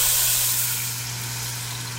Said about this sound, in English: All right, so my chicken is beautiful, nicely browned, nicely caramelized. So we've got 3 cups of chicken stock. And you can pour that right into your pot, okay?